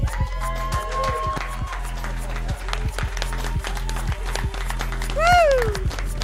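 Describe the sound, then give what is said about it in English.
An audience claps steadily for several seconds, a dense patter of many hands, with faint voices mixed in and a brief rising-and-falling whoop or whistle near the end. “See the clap sign.”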